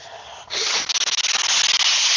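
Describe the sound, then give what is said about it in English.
Someone who is all sniffly blows their nose in one long, forceful honk, a loud breathy rush that flutters rapidly in the middle before holding steady for about two seconds. No talking. “I got to blow my nose. I am all sniffly.”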